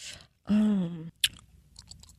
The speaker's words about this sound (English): The last guy was chewing gum like crazy. Now you're chewing like a cow chewing the cud. Oh, I'm like, this is the most unprofessional thing I've heard.